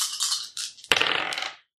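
A brief rattle of dice being shaken and rerolled during a tabletop game, then a sharp clatter as they hit a hard surface and tumble briefly before settling, fairly crisp, with no voices.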